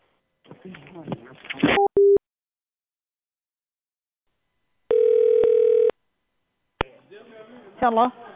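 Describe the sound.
People talk, then a short electronic beep sounds. After a pause, a steady telephone tone rings out for about a second, followed by a click and more voices.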